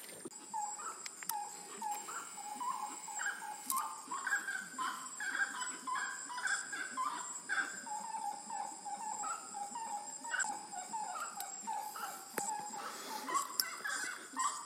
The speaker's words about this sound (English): We're listening to stinky birds on the edge of the lake. And they look kind of like turkey with a blue face.